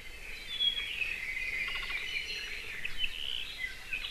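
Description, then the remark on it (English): Thin, high chirps and brief trills from a very rare Hawaiian forest bird repeat irregularly over a steady, hissing wash of high-pitched insect or forest noise, all fairly faint, with no voices, in a high-elevation koa forest on the Big Island of Hawaii. “In addition to controlling mosquitoes, planting koa forests would be a great way to increase populations of this very rare and important species.”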